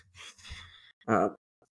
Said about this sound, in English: It's ironic because I just took 200 milligrams of caffeine. I'm yawning.